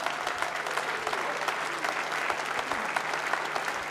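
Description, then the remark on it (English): Sustained applause from an audience for a pastor, a dense wash of many hands clapping steadily throughout, fairly loud and continuous with no clear pauses and no talking over it. “Come on, let's give Norm a clap, shall we?”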